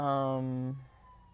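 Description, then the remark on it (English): A police siren blares in a steady, buzzy tone for under a second, then cuts off, leaving only faint background noise. “Sorry, these sirens threw me off.”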